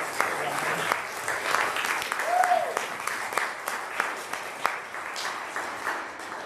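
Steady applause from an audience fills the room, many hands clapping in a dense, continuous patter at moderate loudness, with a brief faint whistle-like tone partway through.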